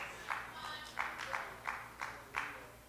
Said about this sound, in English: See, two people clapped because they know.